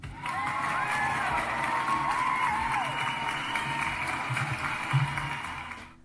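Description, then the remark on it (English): A crowd claps and cheers steadily for about six seconds, agreeing that Canada Goose is the worst company in Canada, dense applause mixed with shouts and a few rising whoops or whistles, before quickly dying away at the end. “Like, so, hold on, let me get a clap if you agree Canada Goose is the worst company in Canada.”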